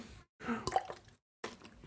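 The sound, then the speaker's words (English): Loud wet gulping as someone drinks water, a few swallows separated by brief silent pauses, right at the microphone with no talking. “Now I remember why I muted myself when I would take drinks of water. Because it sounds disgusting.”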